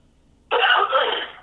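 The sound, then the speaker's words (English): A fairly loud cough and throat clearing, a single raspy burst lasting about a second after a moment of near silence, with no talking. “I got a cough.”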